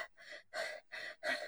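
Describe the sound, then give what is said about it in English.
Quick, breathy panting, about five rapid huffs in a steady in-and-out rhythm, fairly quiet, with no talking. It sounds like a person imitating a panting animal, voicing the character Maple, a stone lion. “Maple's just like panting.”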